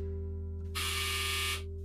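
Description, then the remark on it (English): A household clothes dryer runs on a very hot day in California with a steady, low mechanical hum, and a harsher buzzing whir swells up for just under a second in the middle before settling back. No voices. “I'm sorry, that's my dryer.”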